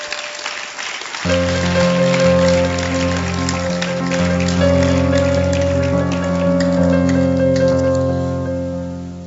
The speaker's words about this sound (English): Oh, you can clap. You are free to clap.